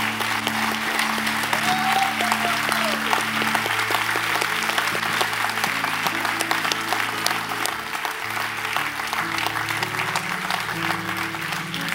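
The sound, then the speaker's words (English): A standing church audience gives one more round of applause in the morning, steadily for the full twelve seconds, a dense, even wash of clapping that never fades, with low sustained musical tones holding underneath. “Church, would you stand with me, and we give them one more round of applause this morning?”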